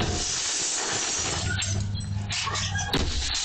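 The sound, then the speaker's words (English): Glass shatters under a series of sharp, irregular blows as a woman smashes the windows of a home in Pasadena with a pickaxe, each crack and crash ringing out over a constant hissing background with a low hum in the middle stretch. “Terror and confusion as a woman wielding a pickaxe smashes the windows of a Pasadena home with a baby and grandmother inside.”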